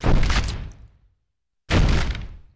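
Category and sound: impact, door being knocked down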